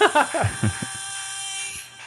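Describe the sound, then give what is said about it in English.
A Transformer robot-walking sound effect played through a radio: a few quick, pitch-sweeping mechanical whirs, then a steady electric buzz with a thin, tinny, radio-like tone, fading out at the end. “I like the reverb of the sound of it coming out of a radio. Wow. Pretty cool. Transformer walking.”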